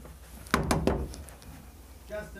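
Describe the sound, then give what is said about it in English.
Three quick, solid knocks on a thick, heavy door, fairly loud with a dull, low thud, followed by quiet with a faint background murmur. “Do you want us to knock and then go in?”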